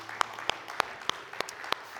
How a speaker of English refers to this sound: Let's give a clap offering.